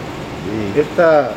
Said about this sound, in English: he is taking us down to the engine room to show us around how this ferry works. And over here we have one of the cylinders that's part of the engine. It's a little bit bigger than what you'd expect to see in your car.